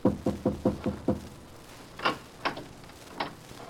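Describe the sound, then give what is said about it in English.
A quick series of five knocks on a door, followed by a pause and then three slower, sharper raps spaced apart. Clear, with no voices. “Now, we shall knock.”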